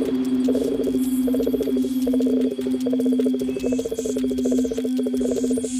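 Nighttime chorus of crickets chirping steadily with frogs croaking in rhythmic pulsing bursts, a dense, continuous outdoor ambience with no voices.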